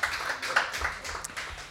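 A short burst of audience applause, a small group clapping in a dense, uneven patter that stays fairly quiet and steady for a couple of seconds with no talking over it.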